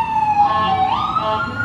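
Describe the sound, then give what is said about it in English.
An ambulance siren wails steadily and loudly, its tone sliding upward as it passes by, with faint road noise underneath and no talking. “Well, there goes the ambulance, so it's a little something more than that.”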